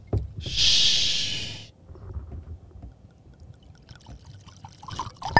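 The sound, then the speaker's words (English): Cognac is poured into a glass as a steady, bright splashing hiss lasting about a second, followed by quiet low rumbling and a few soft knocks. “Always pour up with your friends and your family, man.”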